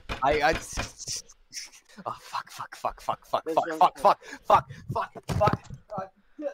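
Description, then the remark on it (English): A fist pounds loudly on a desk, a rapid, irregular series of heavy thumps mixed in with raised voices talking throughout. “Yelling at me why I just pounded on my desk loudly.”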